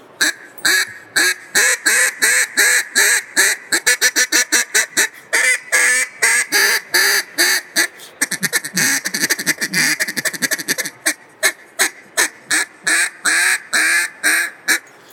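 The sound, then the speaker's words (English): A single-reed duck call blown in rapid, harsh mallard-style quacks, loud, with shifting pitch and short bursts in quick cadence throughout, no voices. “Single reed, a little more aggressive, a little more harsh, and a little more tonal variation.”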